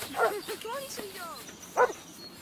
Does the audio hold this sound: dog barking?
yes